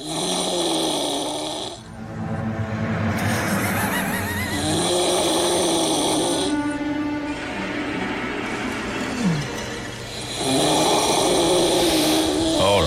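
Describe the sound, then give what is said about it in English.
A man snores loudly in a house, with harsh, rattling breaths repeating in long cycles, the inhales roaring between rougher, buzzing exhales, with no talking. “This is a little bit of audio from this guy snoring.”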